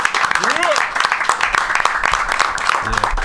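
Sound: audience applause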